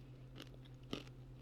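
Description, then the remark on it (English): Crunching of a hard, crunchy peanut butter snack bar with hemp heart protein being chewed, with a couple of sharp bites standing out over a steady low hum, no talking. “they taste good, but I gotta be honest, it feels like a molar's gonna pop out. It's a very hard crunch.”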